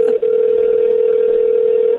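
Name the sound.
phone call ringing out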